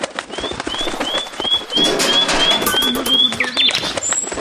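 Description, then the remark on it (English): A bird sound effect plays over a busy background: a run of repeated, evenly spaced chirping calls at moderate loudness, with a softer low cooing underneath. “So we have to get the bird to fly in. Here he is.”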